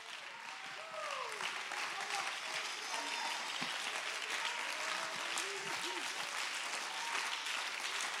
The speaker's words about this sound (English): Let's stand to our feet and clap our hands and give him praise.